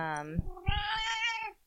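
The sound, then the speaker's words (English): A female cat named Bowie lets out one long, drawn-out meow, loud and wavering in pitch as it stretches for over a second before trailing off. “Bowie just joined us.”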